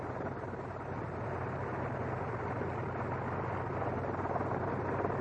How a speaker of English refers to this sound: Idling down now. V8. The OX-5.